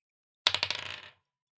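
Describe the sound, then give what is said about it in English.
Dice rolled for a dex check in a tabletop game clatter across a hard table in a quick burst of bright clicks, bouncing several times and settling within a second; fairly loud, with no voices. “The dice know what I want.”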